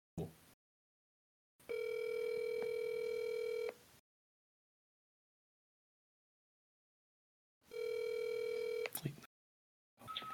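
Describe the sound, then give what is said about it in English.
A telephone rings in two long electronic tone bursts separated by several seconds of silence, steady and fairly loud, like a ringback heard over a call line, with a brief click near the end. “But can you guys hear the ringing? Yes, we can.”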